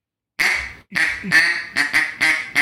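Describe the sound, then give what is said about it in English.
A duck call blown in a flat, loose quack with no pressure in it, repeated five or six times in a quick uneven series, loud with no talking over it. “Just like with no pressure in it, it's just kind of like a loose quack.”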